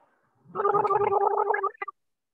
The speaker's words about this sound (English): Just a little coffee gargle for you all. That was coffee? Gargle yes. Coffee?